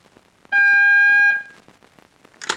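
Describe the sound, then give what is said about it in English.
A telephone time-announcement signal marking 11:42: one loud, steady electronic tone held for about a second, bright and buzzy with stacked overtones, followed by faint crackle and a short burst of hiss. “When you hear the signal, the time will be 11:42.”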